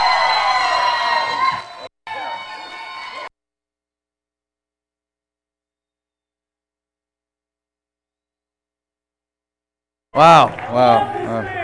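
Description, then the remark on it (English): A loud burst of audience cheering and applause with whoops, welcoming a performer on stage, lasts about three seconds, briefly dropping out, then long silence before a voice begins talking. “So I want you to shake this place with the amount of applause that you give this guy.”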